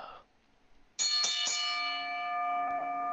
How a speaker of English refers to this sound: do me that … and ring the bell